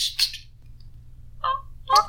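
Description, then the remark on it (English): A person imitates bird calls with their voice, giving three short, high squawking chirps spaced apart, fairly loud, with a low hum underneath. “Yeah, just gonna make bird noises.”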